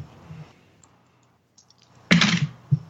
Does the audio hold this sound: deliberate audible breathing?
no